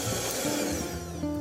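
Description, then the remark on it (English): A thick, pale mixture of egg yolk, sugar and zest being beaten to integrate the ingredients until smooth: a steady, loud whirring and scraping that runs without pause, with a droning hum that shifts pitch slightly partway through. No one speaks. “I'm going to make a little bit of noise again and beat this, but I'm really at this point beating it just to integrate all the ingredients until they're smooth and homogeneous.”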